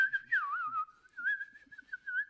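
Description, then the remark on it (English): A person whistles a wavering, continuous tune with gliding pitch bends and a few rising chirps, clear with no talking over it. “No, it's called a whistle.”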